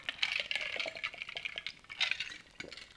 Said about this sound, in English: Water.